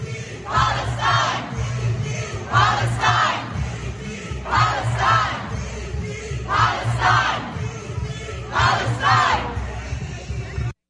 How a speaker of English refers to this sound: There's these anti-Israel rallies and marches that are happening in cities around the world. I'd like to first go to London as they chant, Free, Free Palestine.